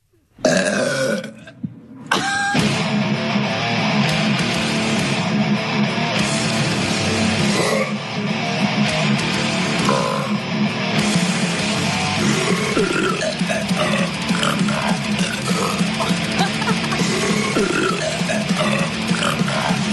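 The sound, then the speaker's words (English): Loud, guttural burps from many people bellowed over a dense, distorted death metal track in a Liquid Death promo video, the belches rumbling low and sustained almost continuously after a brief pause near the start, with no speech. “Since the name of the stuff is called Liquid Death, they used a little death metal, and they used a lot of people burping.”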